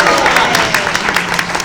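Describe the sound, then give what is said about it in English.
Steady applause from an audience for a man who has just been given a Drax keychain as a prize, a dense patter of many hands clapping at a fairly loud, even level with a few sharper claps standing out, and no voices on top. “Keep clapping for him so it's not awkward.”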